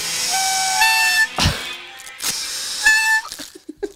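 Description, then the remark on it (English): A firework hisses loudly and steadily, with shrill whistling tones over the rush, broken by two sharp cracks and ending in a few scattered quieter pops. “Is that a firework?”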